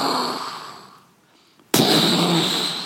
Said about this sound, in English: That's a wave sound. Yeah, but it's like an explosion. If you've ever been here, or if you've ever been on the surf, on the shore of an ocean, crashing of waves, you can know how loud it can get.